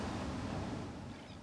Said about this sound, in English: I don't know what the symbolism is about sitting on this beach right now, but there's something here because this feels amazing with the waves and the